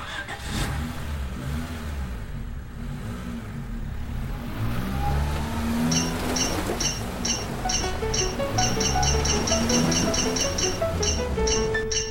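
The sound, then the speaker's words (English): A car engine rumbles and revs up as Freddy's car pulls away from Ladybug Town, heading to Dragontown, its pitch climbing steadily, while a quick series of high electronic beeps chirps over the second half. “Freddy sighed and got back into her car.”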